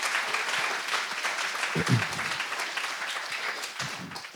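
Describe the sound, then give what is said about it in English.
A church audience claps steadily in praise after a prayer, a dense sound of many hands, with a few brief vocal calls rising over the applause. “Clap your hands together. Come on, clap your hands. Let's give him praise.”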